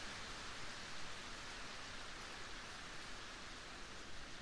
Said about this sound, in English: Notice the sound of the rain.